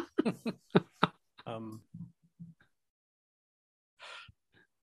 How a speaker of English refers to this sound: but somebody is breathing really loud right into the mic, like whistling nose breathing. And it's driving me bananas. And it's going to drive me bananas.